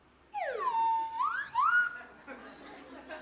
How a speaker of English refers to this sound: That slide whistle means my pants just fell down. Is that funny? Goddamn right it's funny. It's hilarious.